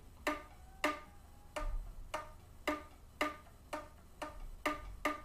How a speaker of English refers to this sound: Anything below a G works, but they will almost always sound the best if you do your key click with the G key. This is a low D comparing key click on the G versus my right hand ring finger.